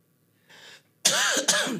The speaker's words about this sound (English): Oh, goodness. I had to cough.